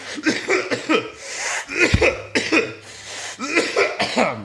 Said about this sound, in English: I promise y'all I don't got COVID. Y'all gotta forgive me for coughing this shit on this phone. I'm probably giving y'all all my germs, all my cooties and shit like that.